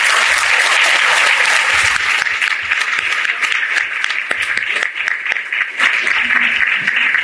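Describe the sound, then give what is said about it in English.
Sustained applause from an audience for the panelists, a dense, steady wash of many hands clapping at full volume for the whole stretch without easing off. “And please a round of applause for all the panelists.”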